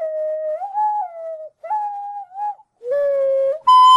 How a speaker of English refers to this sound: I'm gonna play you out with my ocarina. Cheers.